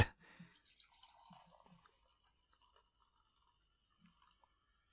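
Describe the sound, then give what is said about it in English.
A short clink, then a drink is poured from a can into a cup for a guest, with quiet splashing and fizzing that thins out to a few faint drips. Soft, and no one speaks. “I'll pour it for you first, since you're the guest.”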